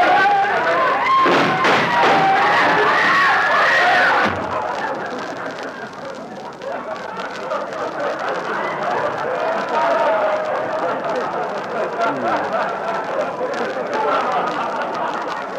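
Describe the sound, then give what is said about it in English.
Dense crowd murmur of a packed bargain basement of a store, many overlapping voices chattering at a steady, fairly loud level, with a brighter burst of busy noise for the first few seconds before settling into a continuous hubbub. “It is pretty crowded at that.”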